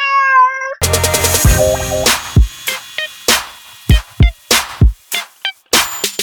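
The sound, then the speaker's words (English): A single short cat meow sounds clearly at the start, then gives way abruptly to a loud, punchy musical sting with sharp, rhythmic drum hits. “Think Funny cat.”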